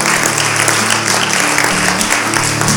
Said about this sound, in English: So if you're taking that step tonight, can we just give these guys a clap? Yes.